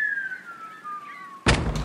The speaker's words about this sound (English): Lower the getting on the boat plank, please, fellow pirates.